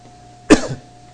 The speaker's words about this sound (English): He's coughing.